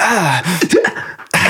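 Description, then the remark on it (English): A loud, theatrical gasp from a voice, drawn out with sweeping, wavering pitch and a breathy rush, followed by a brief pause and another sharp intake of breath. “Really over exaggerated gasp.”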